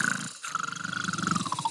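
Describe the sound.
A voice imitates the loud snoring of an aunt sleeping in her bed: a short throaty burst, a brief gap, then a longer rattling, rasping snore with a steady fluttering pulse, harsh and growl-like.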